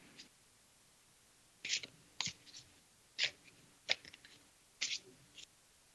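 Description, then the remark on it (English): Tarot cards being shuffled, heard as five quick, papery bursts at uneven intervals, soft against a quiet background with no voices. “So, Cindy, I'm shuffling the cards.”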